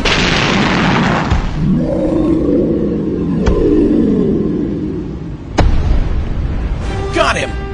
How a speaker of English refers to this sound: It's going to explode, you idiot!